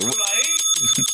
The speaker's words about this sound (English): It's the return of the bell, baby. That was the Kobe bell.